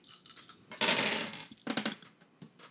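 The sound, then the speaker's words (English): A handful of dice, rolled for an opposed charisma and persuasion check in a tabletop role-playing game, clatter and rattle across a hard surface in a loud burst, with a few scattered clicks before and after as they settle; no one speaks. “I like the number of dice in your hands.”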